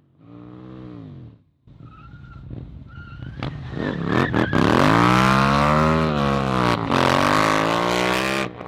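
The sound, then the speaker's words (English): A motorcycle making a U-turn: the engine revs and drops, then the tires skid in a short slide as the bike turns around before the engine roars high and steady through a screeching burnout with loud tire squeal. “Yeah, a little slide, turn around, a little burnout.”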